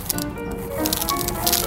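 A sound man shakes rice in a container to mimic rain: a steady, dense granular patter and hiss with brief brighter swells, continuous throughout, with no voices.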